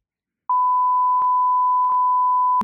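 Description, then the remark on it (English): A steady, loud censor bleep tone runs unbroken for about two seconds over a spoken phone number, with faint clicks of chopped-off speech poking through it before it cuts out abruptly. “All right, we're going to bleep this, but what is Kelsey's phone number?”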